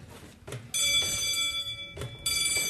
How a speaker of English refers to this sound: If it's one bell, it means that we're on a red, which means everyone quiet because they're about to shoot. A two bell means that the red light's off and we can now talk freely and make noise and move around and things like that.